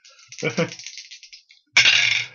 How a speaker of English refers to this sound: So you've made your pick lock roll. Let's hear those dice rolling.